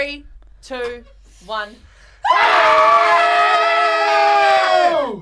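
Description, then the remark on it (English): A few short voiced sounds, then several people let out one loud, sustained scream together just before the mics are turned on for their show, for about three seconds, holding steady before the pitch sags and cuts off. “So we would, just before the mics turned on, we would do this big scream.”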